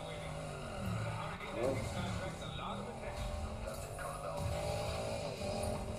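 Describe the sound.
A car in a video game, being driven toward a ramp, has its engine roar steadily throughout, with brief tire squeals and skidding, loud, while voices talk faintly underneath.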